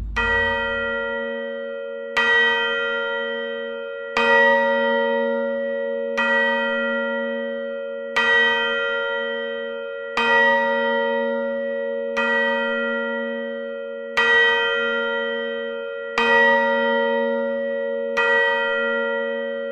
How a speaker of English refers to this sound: When the clock strikes midnight, the story will begin.